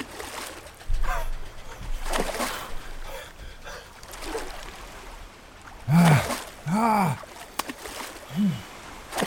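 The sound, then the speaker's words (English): A person falls overboard from a speeding yacht into the Caribbean Sea: water sloshes and splashes in uneven bursts, followed by several short, strained gasping cries near the end against a rushing, boat-like background. “Any cry from my throat was pinched off short as the blood-warm waters of the Caribbean Sea dozed over my head.”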